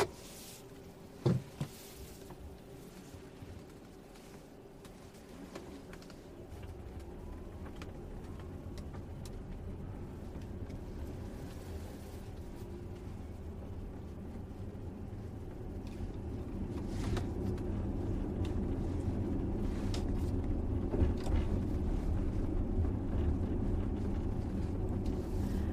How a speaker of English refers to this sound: The car is so quiet since there isn't a gas engine pushing it forward. Rather, dual motors getting power from lithium-ion batteries.